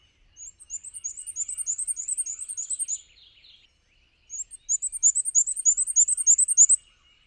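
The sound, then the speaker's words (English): A pair of black-and-white warblers on a hiking trail sing two bouts of thin, high-pitched, squeaky notes repeated in a rapid, even rhythm, each phrase lasting a few seconds with a brief pause between, clear with no talking. “we saw a pair of black and white warblers that were really, really cool to see. I think I even got a short video of them singing.”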